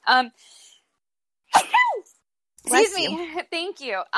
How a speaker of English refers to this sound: And excuse me, I'm going to sneeze at some point soon